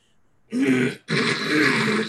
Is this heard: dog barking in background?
no